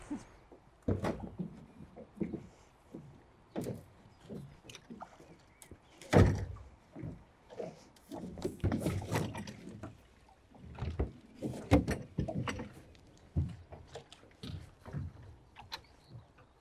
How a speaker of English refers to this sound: So we're going to get in the boat.